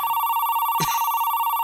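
A steady electronic telephone tone hums continuously and fairly loud as a phone call is placed, interrupted once near the middle by a short click, with no voices present.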